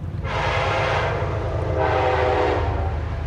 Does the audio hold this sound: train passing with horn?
yes